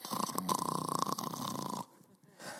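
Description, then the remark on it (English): A voice imitates Peter sleeping in his cell with a loud, rattling snore, one long buzzy breath lasting under two seconds before cutting off into quiet. “He comes over to Peter. Peter's just snoring away.”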